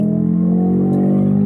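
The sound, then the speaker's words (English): A steady car engine drones from inside the cabin of a car being tested, a loud low hum with a slight rise in pitch, continuous throughout with no voices. “Hey guys, I'm in the car with my dad doing a podcast.”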